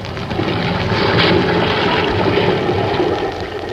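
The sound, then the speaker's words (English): A roaring half-gale wind over crashing Pacific Ocean waves as a schooner fights its way through, a continuous loud rush of churning water and gusting air that swells and surges without a break and with no voices. “The schooner Spindrift is still fighting her way through a half-gale in the Pacific.”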